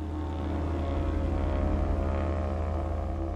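A Twin Otter twin-engine propeller airplane drones steadily and loudly, flying north from Montreal, Canada, its deep throbbing engine hum and buzzing harmonics holding constant with no voices.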